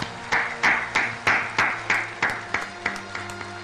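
Steady hand clapping at Richard Petty's induction into the NASCAR Hall of Fame, about a dozen sharp claps at an even, brisk rhythm, moderately loud with a faint low hum underneath and no talking.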